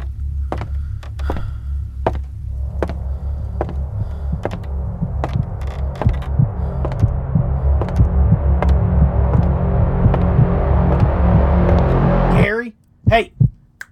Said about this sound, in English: I think you accidentally hit the heartbeat sound effect on the soundboard. You mind turning that off?